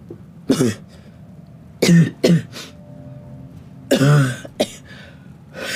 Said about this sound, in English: Your cough.